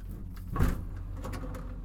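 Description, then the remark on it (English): A vehicle door opens with a short mechanical clunk and brief rattle over a steady low engine-like rumble that continues afterward. No one speaks. “Open the door.”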